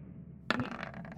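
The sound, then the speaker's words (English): A die drops onto a hard table with a sharp clack, then tumbles in a quick run of fading clicks and rattles, fairly loud, lasting under a second. “These dice makes me so nervous.”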